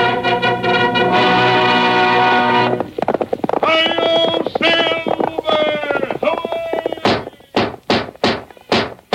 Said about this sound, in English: Fiery horse with the speed of light, a cloud of dust, and a hearty high-o silver, the Lone Ranger.